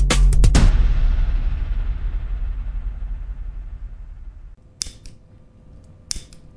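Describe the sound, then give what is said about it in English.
A lighter is flicked in a bathroom: a quick burst of sharp metallic clicks rings out with a long echoing tail, followed later by two more single clicks. “Ooh, listen to how echoey my lighter is in the bathroom.”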